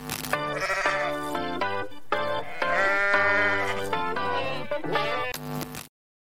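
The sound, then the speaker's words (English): A short, catchy segment jingle for the Vancouver Canucks 'GOATs of the week', built from loud, wavering bleat-like animal tones over a layered musical bed. It plays for about six seconds before cutting off abruptly. No one speaks. “Shout out to Kyle Bowen for always producing these catchy little jingles, funny looking bumps if you're here with us on YouTube.”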